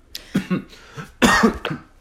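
A series of several harsh coughs in quick bursts from a cough that has lingered for two weeks, the strongest and longest near the end, with no talking in between.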